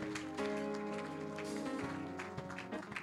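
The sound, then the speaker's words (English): A crowd claps for itself after a prayer, steadily in a dense, overlapping patter, with a sustained musical tone humming underneath throughout. “Clap for yourself.”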